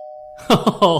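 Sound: doorbell ringing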